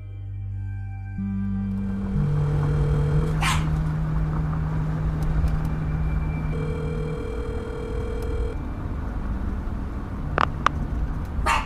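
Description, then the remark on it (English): A dog barks twice, two short sharp barks spaced several seconds apart, over a steady low droning hum with sustained tonal notes. No one speaks. “And who's that with you? Marge's dog.”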